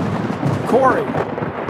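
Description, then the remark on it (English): A thunder sound effect marking a lightning round segment: a loud, rolling thunder rumble fills the short moment, deep and sustained throughout, with a brief tonal swell rising through the middle. “it's lightning time.”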